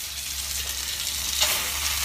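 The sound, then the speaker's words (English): Chicken sizzling in a hot pan, a steady crackling hiss with a bright pop and flare of spitting fat about halfway through, over a low constant hum. “You don't get a fluffy bed cooking up some chicken.”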